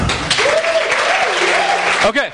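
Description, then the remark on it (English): A church audience claps to show how many of them are married. It is a steady, dense patter lasting a couple of seconds, with a voice or two calling out faintly underneath the clapping. “By round of applause, how many of you are married?”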